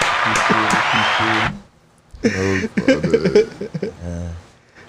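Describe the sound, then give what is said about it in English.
A short burst of clapping and cheering from people around a table, a round of applause for the blunt roller, lasts about a second and a half, with voices mixed in, then stops abruptly as people start talking. “Round of applause.”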